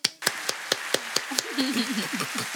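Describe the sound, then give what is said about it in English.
A quick, steady run of about a dozen sharp hand claps in an even rhythm, with a faint voice murmuring beneath them during the second half. “Round of applause.”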